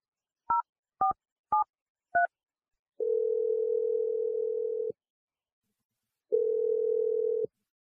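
Four quick beeping keypad tones as a number is dialed, followed by two long, steady ringing tones separated by a pause, heard on the caller's end of the line. No voices.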